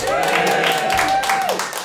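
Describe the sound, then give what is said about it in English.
An audience cheers loudly for about two seconds, a dense wash of whooping voices with scattered clapping and a sustained whistle that holds steady before sliding down at the end. “Right, so give me a cheer if you've ever wanted to get somewhere quickly.”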